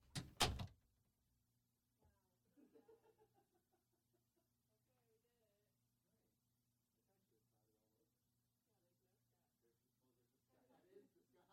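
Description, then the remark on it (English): A door slams shut with a loud thud right at the start, followed by quieter murmuring voices and faint rustling in the background. “I think there's a door right here.”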